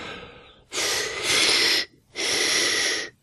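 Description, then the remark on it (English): A deep, raspy breath drawn in, followed by a second long breath, both carrying a thin whistling wheeze that comes at the end of the breath. There is no talking. “Hard to breathe at the end, starts getting all wheezy.”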